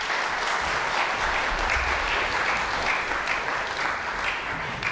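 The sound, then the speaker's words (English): A crowd gives a round of applause for a boy, clapping steadily for several seconds, a dense, even patter of many hands that stays loud and constant throughout without any voices over it. “Shall we give him a round of applause?”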